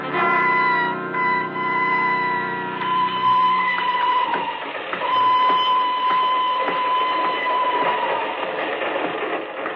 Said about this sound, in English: I'm leaving on the train to Bern.